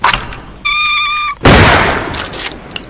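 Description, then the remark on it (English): A kitten, launched as a shooting target, yowls in a sustained, high-pitched cry for under a second, cut off by a loud gunshot blast that rings out and slowly fades. “Sir, we've run out of kittens.”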